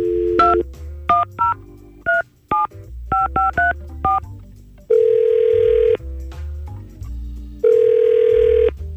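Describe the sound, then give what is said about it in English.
A quick series of about ten telephone keypad tones beeps out in an uneven rhythm as a phone call is placed, followed by two long, steady ringing tones separated by a pause, clear with no voices. “So I think the only thing left for us to do is try and call Molly. All right, let's give her a call.”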